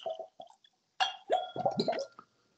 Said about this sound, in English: So I'm going to pour. And I'm going to use my Glencairn. I'm going to use my Glencairn because I had a feeling.